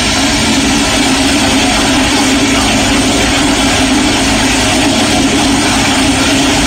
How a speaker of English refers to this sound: That's like as much water as a tub. Yeah. No wonder there's a water shortage. That one toilet. That is a 21-second toilet flush.